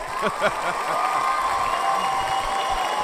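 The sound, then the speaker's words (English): A standing ovation applause sound effect: loud, dense applause, a steady wash of many hands clapping that holds at full strength for about three seconds, with brief crowd voices or cheers near the start. “Wow, that almost sounded like a standing ovation clap.”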